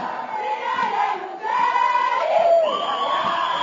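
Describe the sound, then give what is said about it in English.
A large crowd of protesting workers and students chants and shouts together at a campus gate, a loud, continuous mass of raised voices that briefly dips, then surges back even stronger and holds to the end. “The crowd protested peacefully at Gate 1 yesterday morning before marching through the campus after lunchtime.”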